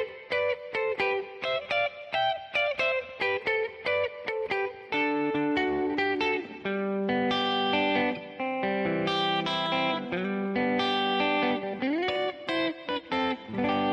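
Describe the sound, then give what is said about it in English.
A clean electric guitar plays a bright, melodic riff of quick plucked notes and ringing chords, steady for the whole stretch, with no voices over it. “So a clean sound like this would work well”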